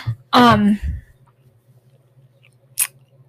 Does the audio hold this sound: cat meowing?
no